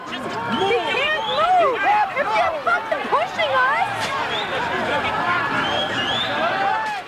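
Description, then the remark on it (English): At night, a crowd of many voices shouts and yells over one another for police to stop as an officer kneels on a woman's neck; loud and agitated, a dense continuous clamor that stays intense throughout. “One scene from that night includes a police officer kneeling on the neck of a woman as the crowd shouts for them to stop.”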